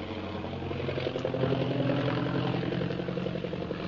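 A propeller plane flying over the city of Shanghai, circling in thick fog, drones steadily overhead, a continuous rumbling hum with layered low tones that swells slightly and holds at a constant, fairly loud level throughout.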